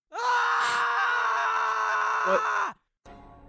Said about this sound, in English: And as you're all preparing, that's when you do hear something. You hear a scream.